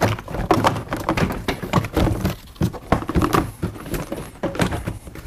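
A car door panel being lifted off its tree clips, with an irregular series of plastic pops, taps and dull thunks over about five seconds and no talking.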